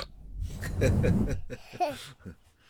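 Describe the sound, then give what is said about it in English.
A talking Peppa Pig toy lets out a few snorting oinks and a short squeaky vocal sound, close to the microphone and fairly loud, with no other voices. “A talking Peppa Pig?”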